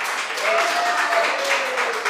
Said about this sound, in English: Can we make another round of applause for our guest in the hot seat all the way from North Carolina, the kid, one time?